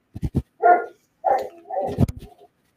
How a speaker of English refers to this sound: Dog is barking at me. He wants my attention.